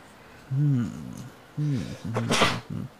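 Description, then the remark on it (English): A fairly loud sneeze: a couple of voiced, halting breaths build up before a sharp, noisy burst near the end. “Bless you.”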